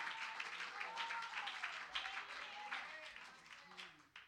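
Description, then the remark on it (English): An audience claps steadily for several seconds at a preacher's call to clap and shout amen, a dense wash of applause with scattered voices calling out over it, fading slightly toward the end. “If you believe it, clap your hands and shout amen.”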